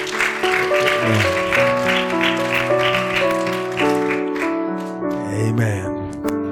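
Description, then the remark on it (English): A church audience claps to welcome visitors, a steady wash of many hands applauding beneath loud, sustained organ-like chords that shift pitch throughout. “While you're doing that, if you got a free hand, let's give all of our visitors a hand clap of welcome today.”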